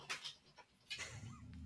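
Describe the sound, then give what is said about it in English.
A very large dog vocalizes: a few short, sharp barks or yelps in quick succession, then a longer, drawn-out whine or groan, fairly loud with no talking. “I have a very large, very left out dog.”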